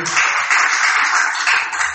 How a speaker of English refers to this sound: Please clap for the first time.